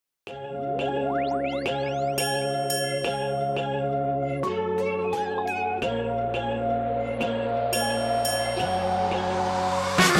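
An upbeat pop song intro plays on its own, with bright synth stabs, chiming bell-like tones and rising sweeps over a steady bass pulse, building toward a fuller, brighter sound at the end.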